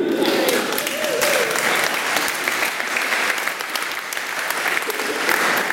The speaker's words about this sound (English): I love the way we clap, like she's achieved something.